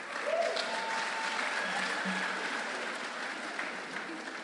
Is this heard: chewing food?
no